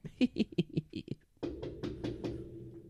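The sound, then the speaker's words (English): A quick run of about eight firm knocks on a door as guests arrive to set up a birthday surprise, evenly spaced over a second, then a sudden wash of noisy bustle takes over. “Oh, someone's at the door, sweetheart.”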